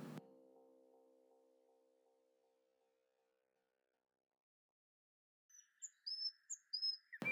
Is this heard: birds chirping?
yes